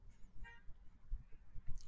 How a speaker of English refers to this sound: sorry, guys, someone was honking at me, and that was unexpected.